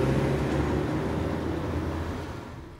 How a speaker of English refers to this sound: Wow, we already made it to California Pizza Kitchen. That was an incredibly short car ride. Yeah, exactly. This is a podcast, Dave. A couple seconds of vroom vroom, and they get the point.